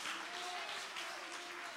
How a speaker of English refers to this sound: Somebody clap your hands and give the Lord some great praise.